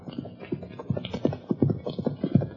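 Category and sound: animal, horse galloping hooves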